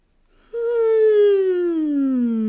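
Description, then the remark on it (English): A long, voiced yawn while stretching by reaching up on one side: a brief intake of breath, then a steady moaning tone that slowly slides downward in pitch for about two seconds, fairly loud, with no talking. “Can you find some space between your ribs by reaching up on one side and yawning?”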